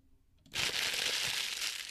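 After a brief hush, a paper script is crumpled and thrown away, a dense, crackly rustle of crinkling that starts abruptly and continues steadily at a fairly loud level until the end, with no talking.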